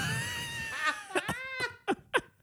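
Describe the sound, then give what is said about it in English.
A drawn-out, wailing scream rings with heavy cathedral-like echo, its pitch sweeping and bending, then breaks into several shorter cries that trail off into the reverberant space. “It's like hearing you stand in the middle of a cathedral and scream.”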